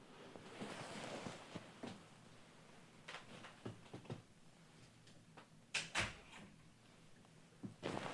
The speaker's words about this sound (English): I do not want to hear the laundry beeping anymore. Sorry, guys, had to close the door.